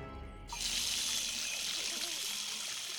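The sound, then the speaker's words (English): A faucet is suddenly turned on in a big house and water runs steadily with a bright, hissing rush, fairly loud, continuing without a break until the end. “Walter could have sworn he heard water running.”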